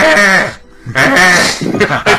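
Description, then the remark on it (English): A person imitates a goat's bleat with two loud, wavering, nasal cries, the first longer and the second following after a brief pause, with a strained vibrato. “They had a picture of a goat. Oh, really? You know how they go...”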